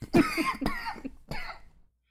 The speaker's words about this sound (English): I'm also sick as shit today, by the way. Sorry for coughing. That's a bummer. Actually, I don't know if I'm, like, actual sick. It's just, like, my chest is heavy, throat sore, like, coughing a lot.